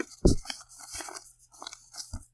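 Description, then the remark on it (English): Playing cards being shuffled: a soft papery thump, then a stretch of quick, crisp riffling crackles, ending in another firm tap. Moderately loud, with no voices. “Do you want me to shuffle more cards?”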